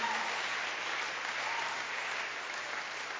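An audience claps steadily for a few seconds to welcome a new friend, a dense, even wash of many hands with no voices standing out above it.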